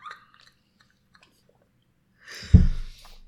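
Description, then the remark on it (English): After a near-silent stretch with faint mouth clicks, a person gargles water to rinse the mouth, a wet gargle that bubbles up suddenly and rumbles loudly for about a second until the end. “Like I have to do a water gargle for a quick second because one, my mouth is really dry too.”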